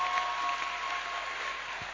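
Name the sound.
audience clapping hands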